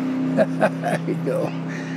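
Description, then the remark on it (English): A car passes along the main road in Marble amid summer traffic, its engine a steady, droning hum with shifting tones, loud, holding for the full two seconds. “Now, summer traffic can be constant. Kind of noisy, huh?”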